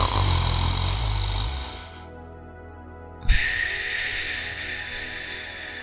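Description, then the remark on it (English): A voice imitates deep-sleep breathing: a raspy, low snoring exhale, a brief pause, then a long breathy inhale, fairly loud. “And when we're asleep, not dreaming, deep sleep, the breath is basically how I was breathing in meditation, except it makes the sound.”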